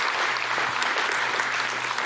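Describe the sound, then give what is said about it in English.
Steady, dense applause from a church audience for a pastor returning to his seat after speaking, a continuous wash of many hands clapping at an even, fairly loud level with no voices standing out. “Would you guys applaud Pastor Dan as he returns to his seat for that fantastic word?”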